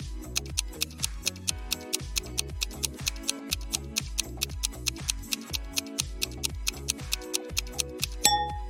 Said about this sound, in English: And in front of the third exit, there's a timer ticking down to an explosion in 5 minutes.